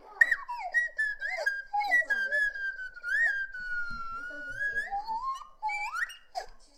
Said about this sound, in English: Wow, that was awesome. Andy Dick giving you a little slide whistle birthday song, and you were in bed.